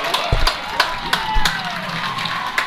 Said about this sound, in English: And I'll just let you hear the Exeter crowd thrilled to finally get rid of their bugaboo and beat Wilson here tonight by a final score, 42-14.